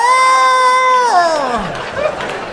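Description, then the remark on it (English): A loud, drawn-out howl from a small group of comedians packed on the sidewalk, yelling together, holding one high wail before sliding down in pitch and trailing off, with no talking. “Comedians, make some noise. Are you guys back there? You hear that? You hear that sad roar?”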